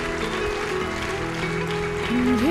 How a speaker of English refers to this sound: Come on, church, let's give them a great big clap. Hallelujah.